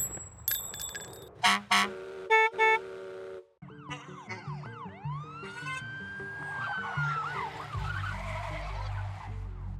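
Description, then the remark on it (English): A bus horn honks in a few short, loud blasts amid a busy mix of bell-like tones, swooping siren wails and a low rumbling engine, with no talking. “it's time to get the short bus. All aboard.”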